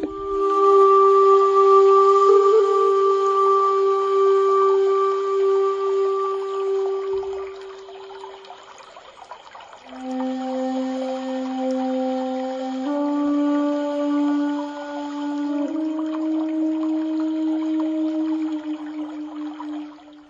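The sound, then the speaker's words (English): Long, sustained breathy tones like a low flute or panpipe glide between a few pitches, with a faint watery trickle beneath, forming a calm, continuous Japanese garden ambience with no voices, played by an Alexa skill. “Japanese Garden Sounds”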